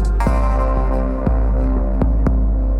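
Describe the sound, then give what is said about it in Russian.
Several jaw harps drone together in a loud, buzzing low hum rich with overtones, punctuated by a few sharp twanging plucks spaced unevenly. No voices. “Хор варганов вторит небу, и снова ты живой.”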